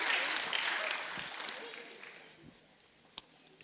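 A small group applauds, a dense patter of clapping that is fairly loud at first and gradually thins and fades over a few seconds, ending with one sharp isolated clap.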